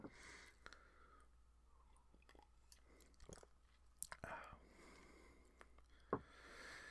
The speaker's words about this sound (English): As I take a sip of tea.